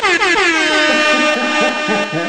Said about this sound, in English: Oh, this nigga get air horns. Hold on.